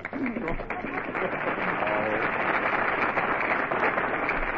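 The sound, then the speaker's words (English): A studio audience applauds steadily throughout, a dense, even wash of many hands clapping, with no pauses and a faint murmur of voices mixed in. “All right, folks, you made your applause. Now lie in it.”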